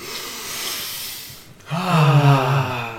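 A long, airy sniff of Irish whiskey drawn in through the nose for about a second and a half while nosing it at a tasting, then a brief pause and a voiced, appreciative hum-like murmur.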